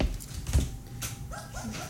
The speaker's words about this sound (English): I think it's the other dogs.